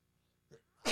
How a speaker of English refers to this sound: Okay, so speaking of that and sneezing, I sneezed away from the microphone, so don't worry, I'm not contagious.